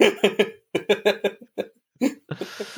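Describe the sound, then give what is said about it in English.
A loud fit of coughing and spluttering after a drink: rapid bursts of harsh coughs in quick clusters with brief gasping pauses, ending in a wet, breathy splutter. “Coughing and spluttering all over the place.”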